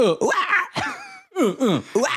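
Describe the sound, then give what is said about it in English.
A person vocally imitates the 'uhs' and screeches from a song: a series of short, energetic bursts with sweeping, squealing pitch glides, loud and in quick succession with brief pauses between. “please do your impression of the uhs and the screeches.”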